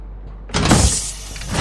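An airlock pressurizing: after a low background hum, a loud rush of hissing air bursts in and keeps whooshing steadily to the end, with a mechanical whirring edge underneath.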